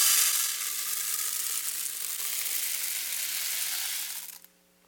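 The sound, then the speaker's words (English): Pebbles pour into a container in a dense, steady stream of hissing clatter that holds at an even level for about four seconds, then stops abruptly into near silence. “And so these pebbles represent that. So let's just pour them in here.”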